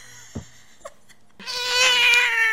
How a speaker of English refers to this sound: Sorry, right behind me as I was singing that, the cat started fighting.